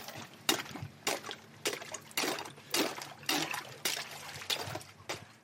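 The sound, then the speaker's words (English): Repeated cracking and crunching of ice being broken on a frozen pond, about nine sharp bursts at a steady rhythm, mixed with sloshing and trickling water as freezing water is scooped into a cup and splashed to collect algae. “But first thing we've got to do here is actually break the ice.”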